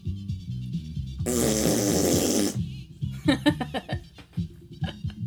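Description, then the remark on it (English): A voice blows a long, loud raspberry imitating a fart, lasting over a second, followed by bursts of laughter from people. “Fart noises will always get a laugh from me.”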